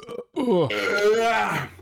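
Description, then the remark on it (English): A long, loud, drawn-out ceremonial burp rumbles for over a second, preceded by a brief short sound. “Ceremonial burps.”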